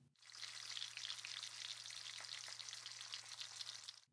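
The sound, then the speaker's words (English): Breakfast sizzling in a pan on a stovetop in the morning, a steady, dense crackle of frying that runs continuously for a few seconds at moderate volume, with a faint low hum underneath. “Brekkie was sizzling on stovetop.”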